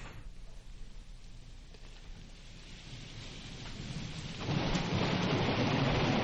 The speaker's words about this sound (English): Yeah, finally rain sound effects.